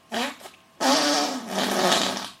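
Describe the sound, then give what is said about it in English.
Two loud, buzzy fart noises made with the hands, a short blurt followed by a longer wobbling one, with no talking. “And that wasn't actually me farting, that was just me demonstrating it by using my hands.”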